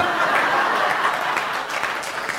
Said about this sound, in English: Hey. I'm joking. You cannot clap when he says that.